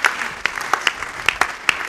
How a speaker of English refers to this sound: It's a good place to clap if you want to clap.